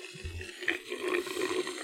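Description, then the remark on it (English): Wet, gurgling slurps of a 32-ounce Coke-flavored Slurpee pulled through a straw, a continuous bubbly sucking sound lasting about two seconds at a steady, moderate level with no voices. “God, slurping.”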